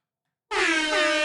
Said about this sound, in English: The new soundboard, I don't even know. Air horn.